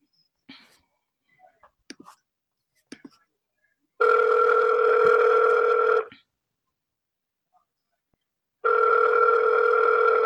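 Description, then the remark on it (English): A few soft clicks and taps give way to a steady two-tone telephone ring as an outgoing phone call is placed to a woman; it sounds for about two seconds, falls silent, then starts again. “You wanna call her? Yeah. What's the number?”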